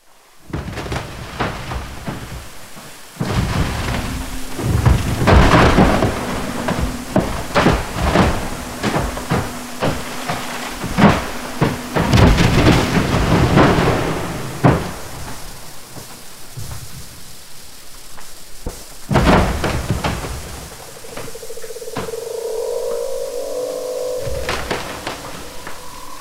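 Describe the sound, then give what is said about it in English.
A montage of glacier ice calving events, recorded both in open air and by hydrophone underwater: repeated loud cracks and deep thundering rumbles, a steady crackling fizz between them, and a softer warbling, tonal stretch near the end. “So listening to multiple ice events or calving, I'm always sort of hesitant, in recording these things.”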